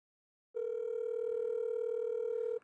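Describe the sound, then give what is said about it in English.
A phone line rings during an outgoing call to a man, waiting for him to answer: one steady electronic tone lasting about two seconds, clear and fairly loud, with no voices around it. “I got him on my phone.”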